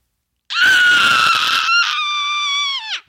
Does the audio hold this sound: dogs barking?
no